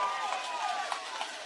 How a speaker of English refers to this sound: And the Patriot faithful leads out a loud cheer. Pretty good group. Made the trip over.